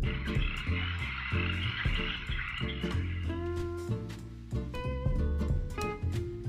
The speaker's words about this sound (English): But let's listen to some sounds of frogs. Here's how they sound. Let's listen to these sounds.